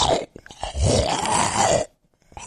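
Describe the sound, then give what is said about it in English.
A voice imitates a ghoul tearing and chewing flesh out of the character Peter Dragonforge: wet smacking clicks, then a long, loud, gurgling growl-groan lasting over a second, followed by a brief pause and more smacking. “What does that ghoul sound like as he's doing, as he's just tearing flesh out of Peter Dragonforge?”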